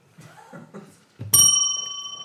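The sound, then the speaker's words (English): A single bright quiz bell ding rings out sharply, its metallic tone lingering and slowly fading, right after a brief stretch of quiet talking; a quiz player belling in to name a film. “I want you to bell in and tell me what the film is.”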